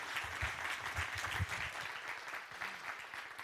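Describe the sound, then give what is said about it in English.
A crowd claps steadily, a dense wash of many hands applauding together at a consistent, fairly loud level from start to finish, with no voices standing out. “Let's give her a warm round of applause.”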